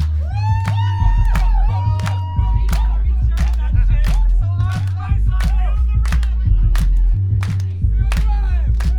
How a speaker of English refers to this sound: Yeah, okay, let's get some hand claps going, come on. Okay, this is the sound of people in London clapping their hands to just the bass line.